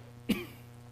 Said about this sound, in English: Sorry for the coughing today, guys. I've got a dust allergy.